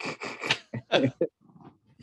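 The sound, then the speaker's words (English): A dog that needs to be let inside makes a series of short, rough vocal bursts, about five in quick succession, followed by a softer, fainter stretch of low grumbling noise. “Hey, I've got a dog that needs to come in.”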